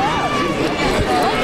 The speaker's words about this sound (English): Amongst the roar of the crowd at her brother's football game, I became the fly on the wall.